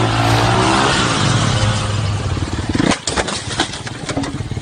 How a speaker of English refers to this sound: The car's moving. He's going. He has to leave. He's being chased.